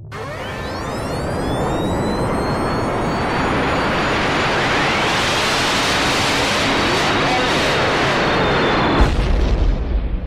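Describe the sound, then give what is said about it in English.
A time machine travel sound effect for a journey to 1995: a dense, roaring whoosh swells up and holds steady, laced with swirling tones that rise and fall, then cuts to a deep low rumble at the end. “We need to recalibrate the time machine, set our new coordinates, and we'll see you on the other side in 1995.”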